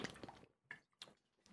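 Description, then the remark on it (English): Water is being poured into a glass in short, splashy bursts, with a longer gush at first and then a few quick trickles, fairly quiet, with no talking. “hold on, let me get some water.”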